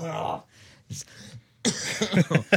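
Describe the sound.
A short cough and some throat clearing, broken by brief pauses, followed by a burst of voiced, speech-like sound at the end.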